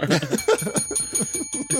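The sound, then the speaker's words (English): A fixed, previously broken bell rings in a rapid, continuous rattle of strikes, fairly loud, its bright metallic tone sustained throughout the short burst. “Oh, you fixed your bell for that one.”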